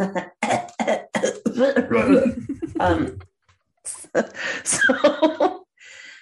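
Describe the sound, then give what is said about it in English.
A person with a scratchy throat clears it: a loud series of rough coughs and throat clearing, several harsh bursts in quick succession, a short pause, then more hacking and a final breathy clearing. “Let me clear my throat.”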